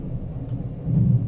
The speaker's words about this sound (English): Was that thunder? That was thunder and lightning that cracked so close my headphones almost, like, blew up in my ears. I thought you dropped something.